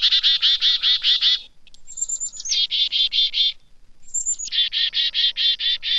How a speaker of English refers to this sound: When chickadees see a goshawk, owl, or some other winged predator, the birds issue an alarm call.